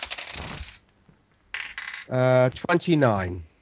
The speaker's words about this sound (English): Rolling dice.